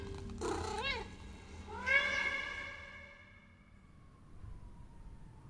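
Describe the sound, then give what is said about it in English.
A cat meows twice, a short cry followed by a longer, drawn-out wail that slowly fades, with only a low background hum and no voices, as two women try to coax it into a cage. “And as I turned off our path, I noticed two quite tough looking ladies, uncompromising types, trying to entice with sweet words the cat into a cage.”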